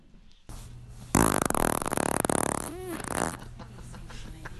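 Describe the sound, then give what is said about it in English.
A long, loud, sputtering fart with a rough, buzzing flutter that rises and wavers before trailing off, heard up close with no talking. “Let me hear that third fart one more time.”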